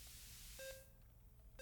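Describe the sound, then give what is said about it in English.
Two short electronic beeps, about a second apart, sound over a steady hiss of background noise: the periodic beeping of hospital monitoring machines in a patient's room late at night. “In some rooms, only the periodic beeping of machines lets you know that there is someone behind the curtain on the far side of the room.”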